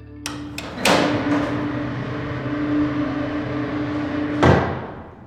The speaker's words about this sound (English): Now, the cell door finally opens.